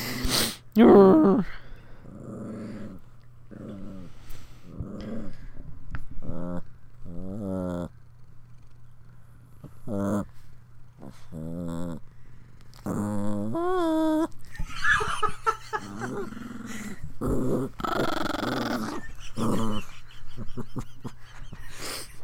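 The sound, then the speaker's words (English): A female dog growls and grumbles, wanting to fight when a fist is raised at her, in a run of uneven bursts, some rising into whiny, yawning vocal sounds, over a low steady hum with no talking. “She starts growling because she wants to fight.”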